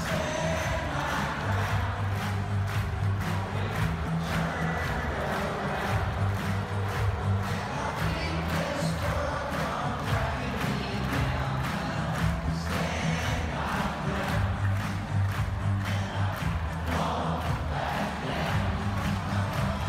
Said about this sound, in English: By the time the song reached its chorus, 90,000 football fans strong stood and shouted at the top of its lungs,